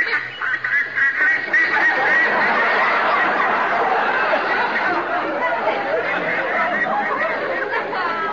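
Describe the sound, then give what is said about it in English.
A flock of ducks flying in a V formation quacking together in a dense, overlapping clamor, loud and steady for several seconds with no pauses between calls. “Army plane. Quack, quack, quack, quack, quack.”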